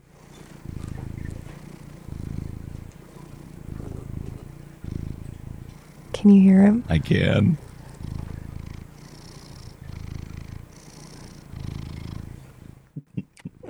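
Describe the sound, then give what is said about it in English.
A domestic pet cat purrs into the microphone in steady, rhythmic rumbling pulses, broken midway by a short meow-like cry; a person speaks briefly and quietly. “I wonder if I can get him to purr into the microphone.”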